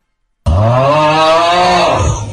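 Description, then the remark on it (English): After a moment of silence, a man lets out one loud, drawn-out snore, recorded in a WhatsApp voice note sent by his wife: a deep, rough, buzzing rumble that holds steady for about two seconds, with no talking. “Getting a good few WhatsApp voice notes with snorers all across the Midlands.”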